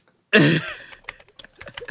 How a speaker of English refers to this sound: That's you typing an email